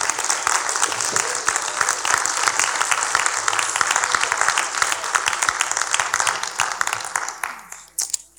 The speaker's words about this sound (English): Come on, give me a big hand clap and thank him tonight.